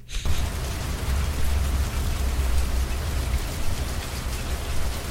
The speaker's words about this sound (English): Why do you have rain in there? I didn't realize I had rain in there.